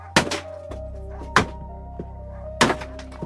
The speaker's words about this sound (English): First, they used axes to break into the building. Breaking down the door.